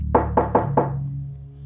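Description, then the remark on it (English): Four firm knocks on a door downstairs in quick succession, distinct, followed by a low steady hum as they fade out. “Suddenly, she hears a knock at the door downstairs.”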